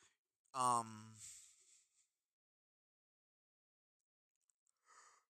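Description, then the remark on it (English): A single loud yawn: a voiced, drawn-out groan that slides downward and trails off into a breathy exhale, followed by quiet and a brief faint sound at the end. “Excuse me, yawning.”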